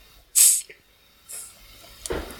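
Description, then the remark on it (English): A sharp, loud hiss bursts out as the cap is pried off a bottle of carbonated tonic water with a bottle opener, followed by a softer fizzing hiss and a faint clink or rustle near the end. “Why do I need a bottle opener for tonic water when I don't need a bottle opener to open a bottle of gin?”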